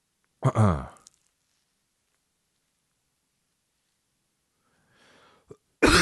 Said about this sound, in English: Now I got kennel cough.